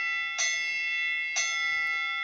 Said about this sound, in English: So we're going to ring the bell to talk about this heavyweight.